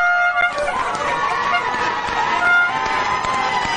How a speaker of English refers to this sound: It's over. The umpire, I don't think, has heard the siren. They haven't heard the blown the whistle yet. The crowd's run on the ground. He's blown the whistle now.